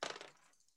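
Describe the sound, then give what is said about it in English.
Two dice rattle and tumble across a hard tabletop in a quick burst of small clicking impacts that fade as they settle, landing on a 1 and a 3; brief, with no voices. “So I rolled a 1 and a 3.”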